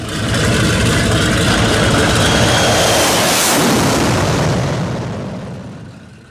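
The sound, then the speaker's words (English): A loud, sustained roar of spaceship thrusters blasting at full power, a dense rumbling rush that holds steady for several seconds before tapering off. No voices. “He's in the way of the engine. You're surely buried. Full thrusters ahead!”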